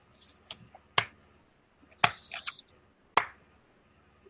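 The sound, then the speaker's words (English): An ironic slow clap: three sharp, loud hand claps spaced about a second apart, with faint background noise between them and no voices. “Oh, it's an ironic slow clap.”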